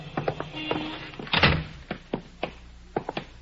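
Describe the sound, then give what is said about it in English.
A door of a settlement house is opened and shut with a series of wooden thunks and clicks, including one louder bang near the middle, followed by a few lighter taps and knocks. “Here, we go in this door.”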